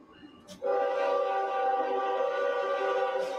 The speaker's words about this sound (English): And don't let it be a BNSF train.